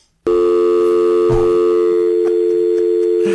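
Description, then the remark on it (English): A steady electronic tone from a Meridian Mail voicemail system on a work phone switches on abruptly and holds at an even, fairly loud level, with a few faint clicks underneath and no voices. “He left me this message on my phone at work, and I have it saved, and I'm going to play it right now.”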